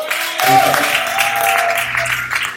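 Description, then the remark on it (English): An audience claps hands for the worship in a steady, dense burst of applause that fills the whole moment, with faint sustained instrument tones humming underneath. “Can we clap for the worship?”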